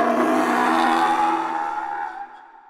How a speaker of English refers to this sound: And then the sound rang out. It was a sound like the scream of a pterodactyl combined with the growl of a lion and amplified 100 times.